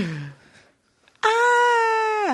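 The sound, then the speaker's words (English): A voice imitates a child screaming so loud that the voice cracks: a short low vocal sound, a brief pause, then a loud, shrill, sustained screech lasting about a second, held at a steady high pitch. “I hate when kids scream so loud their voice cracks.”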